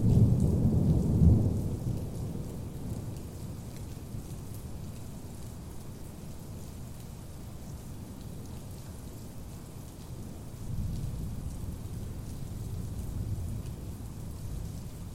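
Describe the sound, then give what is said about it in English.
Deep thunder rolls in at the start and swells again later, a low heavy rumble over a steady wash of falling rain, with no voices. “There is no help. Thunder.”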